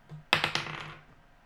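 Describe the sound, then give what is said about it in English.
Dice clatter across a hard tabletop in a quick burst of four or five sharp clicks that bounce and fade within a second, with no talking; the dice are rolled for an attack roll in a tabletop game. “Okay, make an attack roll.”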